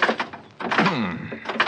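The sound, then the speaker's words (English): A stuck car door is tugged and rattled, with heavy clunks and a strained metallic creak as someone forces it, in two separate bursts of effort. “This door doesn't seem to want to... Trying to pull some trick? No. Open that door. Well, it's stuck, I guess.”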